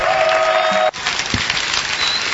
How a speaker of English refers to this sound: Let's clap our hands as we receive our Father, the prophet. Hallelujah. Clap your hands for Jesus.